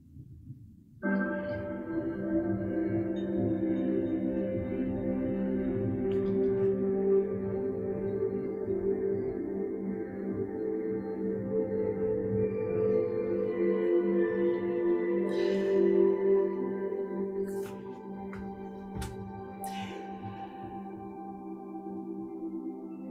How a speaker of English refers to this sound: as you let the music just wash over you.